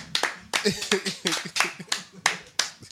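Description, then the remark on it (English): People clap in a loose, uneven rhythm, about nine sharp, loud slaps over a few seconds, with faint voices murmuring underneath. “Clap it up.”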